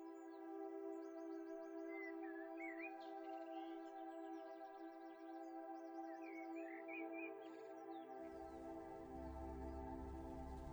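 Bird chirps and trills over a steady hum, then the birdsong stops after several seconds as a low rumbling noise swells in and takes over.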